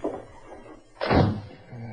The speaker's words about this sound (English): I heard the door close. Is that man gone?